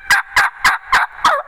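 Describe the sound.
Five evenly spaced hen turkey yelps made on a turkey call, each a short raspy note with a steady rhythm, loud and clear with no talking over them.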